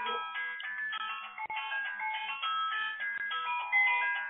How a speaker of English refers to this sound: Is that your cell phone ringing? It's not mine. No, it's not mine either. It's obviously something on your side. Oh, my goodness. Oh, there is. It's mine. It's my phone.